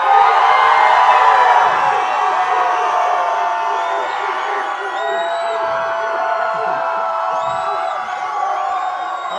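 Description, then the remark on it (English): A large live crowd cheers and whoops loudly and continuously, with scattered high-pitched shouts and whistles rising above the roar, easing slightly but staying strong throughout. The audience is cheering for Beavis in a contest over who cheers the loudest. “We'll be the judges of who cheers the loudest.”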